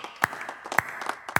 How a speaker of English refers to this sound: I want to be the first to thank her for all her years of service. Let's give her a round of applause. Come on, this is a press conference, not a funeral.